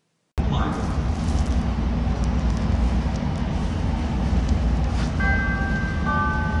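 A subway train's loud, steady low rumble starts abruptly and holds throughout, with clattering noise on top and a few high, sustained whining tones joining near the end; the train is heading to Fullerton station, with transfer to Brown Line trains.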